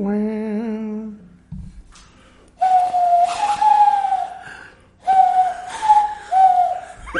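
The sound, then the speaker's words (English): Loud, piercing human whistling held in long steady notes with slight pitch wavers, in two drawn-out phrases after a brief low hum-like tone at the start. “You can whistle like loud, like so the people in other countries can hear it.”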